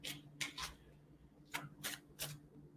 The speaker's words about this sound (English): And this is what I do. I was 16, 17. I'd just sit on my bed and I'd shuffle my cards and I'd ask for guidance. And sometimes a card would pop and sometimes it wouldn't.